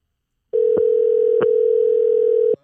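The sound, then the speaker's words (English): A steady, unbroken phone dial tone hums for about two seconds at a clear, even level, with a few faint clicks along the way, as a phone call is being placed. No one speaks over it. “So what we going to do is we're going to give her a call.”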